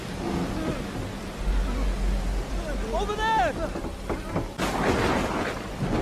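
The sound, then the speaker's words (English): A stormy scene in a film being played, with a boat caught in a storm: a deep rolling rumble of thunder and a steady wash of wind and rain noise, while voices shout over the din. “Watch what happens in the midst of the storm and the lessons that apply to us in the middle of our storms.”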